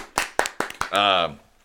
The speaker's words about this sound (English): Michigan was added to the state on legal marijuana. Thank you, Michigan. Hey, no, round of applause for Michigan.